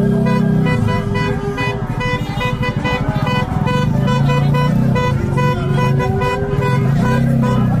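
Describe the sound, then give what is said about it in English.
Many car horns from a large pro-Palestinian protest caravan honk continuously and overlap in a loud, sustained chorus, over the rumble of idling engines in heavy traffic slowed on the way to JFK Airport, New York, on New Year's Day, with no pause throughout. “This was a large pro-Palestinian caravan.”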